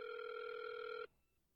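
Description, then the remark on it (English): A single steady electronic ringback tone from an outgoing phone call, sounding for about a second before cutting off abruptly, clear with no voices over it. “Dude, just answer the fucking phone.”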